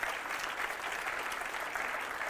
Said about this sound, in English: I'll wait while you clap. That's okay.